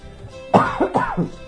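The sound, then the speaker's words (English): A quick burst of three or four harsh coughs in rapid succession, slightly muffled and aimed away from the microphone, with no talking. “Told you they'd be coughing. But I aimed away from the microphone, so you shouldn't get sick.”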